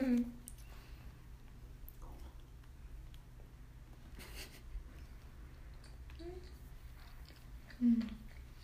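Quiet chewing of a crunchy Little Debbie Christmas snack cake with red and white frosting, green sprinkles and creamy filling, with scattered crisp crunches and soft mouth noises over a low steady hum, plus a couple of brief murmured vocal sounds.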